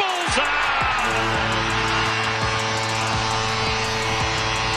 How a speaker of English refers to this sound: There's that horn.